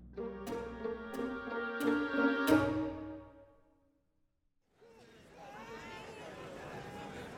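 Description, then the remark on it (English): A dense market-day crowd on Acheron murmurs and chatters in a steady, overlapping hubbub, following a few seconds of ringing tonal chords with sharp struck accents and a brief silence. “I did anticipate the market crowds would aid our exit from the spaceport.”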